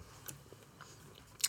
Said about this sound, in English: I'm chewing a Skittle. I apologize. I needed moisture.